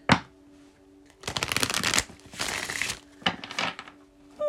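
Tarot cards being shuffled for a tarot reading in several quick bursts of dense, papery riffling and flicking, separated by brief pauses, with a faint steady hum in the background.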